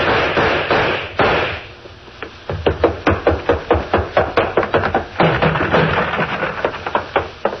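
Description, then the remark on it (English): A rapid string of sharp, punchy explosions bursts out in quick succession, roughly three or four a second, loud and somewhat muffled, coming from the top floor of a restaurant and bar as heard from its front stairs, over a rumbling background. “I got halfway up the front stairs to ask my leading suspect a few questions about explosions when I heard some.”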